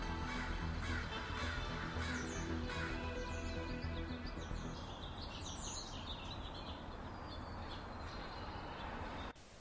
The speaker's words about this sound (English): This is a recording of Birdsong after the first few weeks of shutdown. The director of the National Botanic Gardens in Dubin, Matthew Jabs, has found that this birdsong become much louder than before